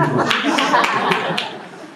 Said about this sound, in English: Yeah. Three claps.